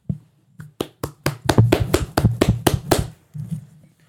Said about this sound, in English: Gone out of here. I'm gonna give myself a round of applause.